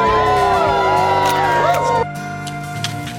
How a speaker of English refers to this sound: All right. Look at that. That's a happy crowd. Rain seems to have stopped for a moment. So glad to have them out there with us.